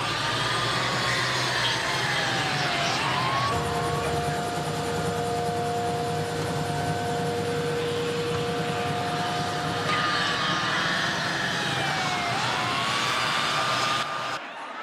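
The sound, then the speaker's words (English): A police siren wails up and down over a loud, steady roar of engines and road noise from a police car chase in Saskatoon, Canada, staged for a Canadian Midas tire commercial, continuous throughout with no talking. “when I came back, I was watching the news, and they had a news report about a police car chase in Saskatoon, Canada.”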